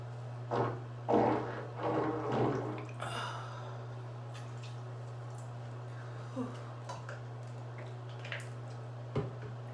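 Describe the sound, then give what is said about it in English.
Water drips and splashes in a bathtub, with a few sloshing bursts early on, then sparse, irregular single drips over a steady low hum. “Filthy water.”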